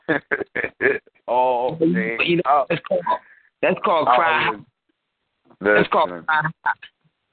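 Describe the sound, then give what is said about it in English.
A voice comes through a thin, narrowband phone line that keeps breaking up, the speech arriving in choppy bursts with abrupt dropouts and silent gaps, like a crackly CB radio transmission. “Do something with your phone, cause you sound like some type of in and out like frequency or something. Like you on a CB.”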